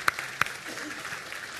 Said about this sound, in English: Okay, yeah, you can applaud that.